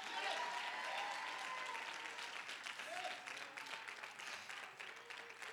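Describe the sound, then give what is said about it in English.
A church audience claps loudly and steadily, a dense wash of many hands, with scattered voices shouting yes and calling out over the applause, which eases slightly toward the end. “And if that is your desire, you ought to clap your hands and shout yes.”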